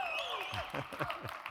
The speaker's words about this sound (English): That's a good place you can clap, okay? All right, you can shout. Remember our verse, Psalm 47:1. Clap your hands, all you people. Shout unto God with a voice of praise.